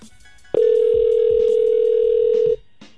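A single loud, steady electronic ring tone of an outgoing phone call placed on the radio show Ebro in the Morning sounds for about two seconds, then cuts off, leaving quiet line noise with no one speaking.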